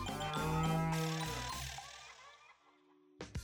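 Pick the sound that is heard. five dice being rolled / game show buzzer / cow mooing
cow mooing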